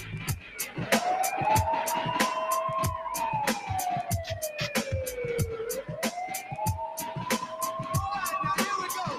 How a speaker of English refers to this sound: I hear the sirens from the cover.